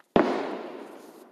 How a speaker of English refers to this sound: You know, you may not be able to see the fireworks going on here, but I can't either, so it's all good. We do it up big out here in the country, out here in the county.